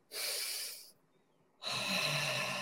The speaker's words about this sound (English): Second thing to do in the moment is some proper breathing. Do people know about the 4-4? Not something I've talked about before. 4 seconds in through the nose.